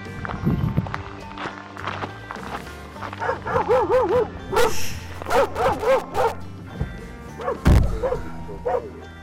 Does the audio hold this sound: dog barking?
yes